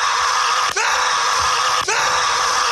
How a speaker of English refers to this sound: Screams of joy became calls for help as the ride, which is designed to go backward, wound up doing so for at least 3 to 4 minutes longer than it should have,